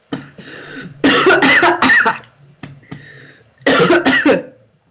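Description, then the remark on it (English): A person coughs in harsh, wet bursts after swallowing water the wrong way: a short cough, then a loud cluster of rapid hacks, a brief pause, and another forceful double cough. “Swallowed water, wrong. Woo! Wrong bite.”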